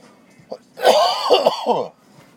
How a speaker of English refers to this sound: Like, it never used to be like that, bro. Like, you go back and listen, like, back in the fucking day, and I was smoking like a goddamn champion, dog. And now, like, I have a coughing fit every fucking time. Like, it's wild, bro. It's wild.